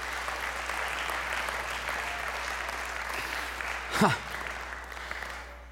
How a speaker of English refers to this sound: Give Him a hand clap. He's worthy of all of our praise.